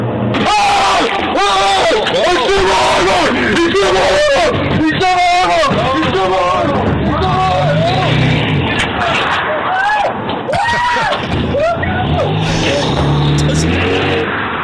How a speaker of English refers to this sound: And he fires a single shot from a shotgun and blasts the guy right in the arm. And the gunman, and I'm going to play this for you in just a second, the gunman screams like a first grader. Here's the sound.